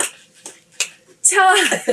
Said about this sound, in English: You didn't do it very well. No, okay, I was going to clap, and then I was going to snap.